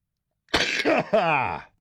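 A sneeze bursts out in three quick, loud, breathy pushes, the last one drawn out and voiced before fading, with silence on either side and no talking.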